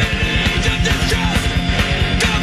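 Loud, dense heavy metal with rapid pounding double-bass drums, distorted guitars and harsh screamed vocals, all played at full intensity with no talking over it.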